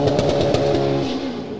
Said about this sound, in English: It's not at all distracting to have race cars starting a giant hill climb section right behind you while podcasting. For those of you who are only listening to the show, we are 100 feet from the start line, so yeah.